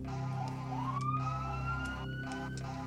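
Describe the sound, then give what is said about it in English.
A siren wails with a slowly rising tone that holds steady, sounding somewhat distant over a constant low rumble, with a few faint clicks and no voices. “And in the distance, you guys begin to hear sirens wailing.”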